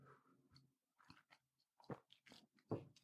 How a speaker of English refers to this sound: But the reality is that, excuse me, let me take a sip of this jasmine tea to wake my throat up.